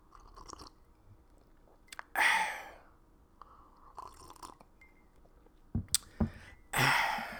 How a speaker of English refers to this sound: Hold on for a second. We're gonna take a quick time out as I sip some of this lovely java that I have prepared for myself this morning.